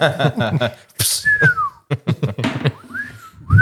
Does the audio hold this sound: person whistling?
yes